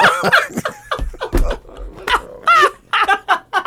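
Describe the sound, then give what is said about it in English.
A dog barks and growls, a string of loud, uneven yaps and snarls broken up by short pauses, with a low rumbling growl underneath some of the barks. “What's wrong with you, dog?”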